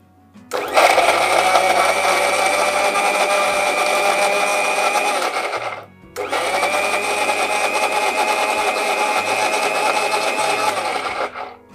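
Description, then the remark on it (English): A mixer grinder whirs loudly in two long bursts, grinding onion, ginger and garlic into a paste with added groundnut oil, a high, steady motor whine with a gritty churning texture, pausing briefly around the middle before starting again. No one speaks. “So I'm going to grind it once more and I'm going to add some more oil.”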